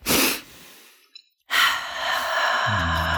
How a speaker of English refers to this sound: Okay, so let's take a little deep breath.